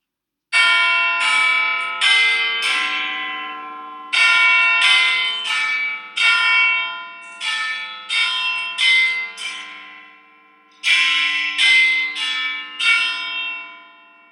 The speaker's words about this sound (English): Okay, so we summoned Big Ben. This allowed us to go back in time and make the phone call.